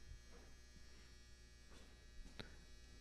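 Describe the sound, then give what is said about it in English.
A clothes dryer's end-of-cycle buzzer drones steadily, a faint, continuous electric buzz that holds unbroken for several seconds with no one speaking over it. “Oh, dryer's done.”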